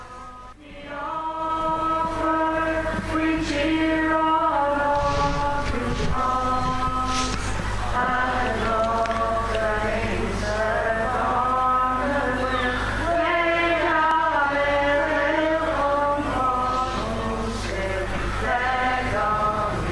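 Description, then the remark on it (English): The Irish national anthem plays at Park Tolson stadium in Navan as both teams, O'Loughlin Gaels and Ruairi Óg Cushendall, line up, with loud, steady brass-band chords holding long notes that rise and fall in a slow, stately melody, over a low background hum throughout. “Both teams just lining up for a Ron Naveen.”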